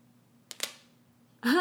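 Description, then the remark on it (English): Knuckles crack twice in quick succession, two sharp, dry pops about a tenth of a second apart. After a short quiet pause, a person starts talking. “Cracking the old knuckles.”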